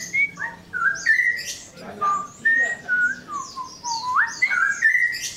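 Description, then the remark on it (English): A person whistles short, sliding tones at a caged songbird, which answers with bright chirps and trills, the two sounds overlapping and alternating in a lively exchange. “All right, so I'm just interested to see if this bird will respond to me whistling.”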